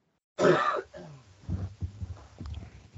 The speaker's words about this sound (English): I'm not editing out the coughs, COVID.